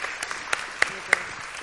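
A round of applause from a group: dense, steady clapping that holds at a moderate level, with a few sharper, louder claps cracking out above the rest.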